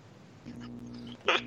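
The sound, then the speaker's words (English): A dog being fed sausage whimpers in a steady, thin whine lasting about a second, then lets out a brief, louder yelp-like burst near the end before the whine continues. “Just feeds the dog a sausages.”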